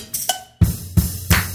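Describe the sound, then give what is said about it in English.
Three sharp hand claps land in an even rhythm, each a loud, crisp smack that fades quickly. A brief ringing, bell-like tone comes just before them. No one speaks. “Oh, I clapped.”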